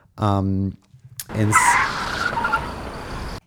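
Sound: car tires screeching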